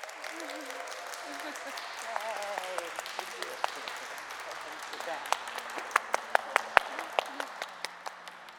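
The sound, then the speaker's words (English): An audience applauds to welcome new members in a steady wash of clapping that thins out toward the end into scattered, sharper individual claps. Faint voices murmur underneath at the start. “Let us welcome our new members with some applause.”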